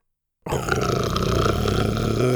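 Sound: dinosaur growl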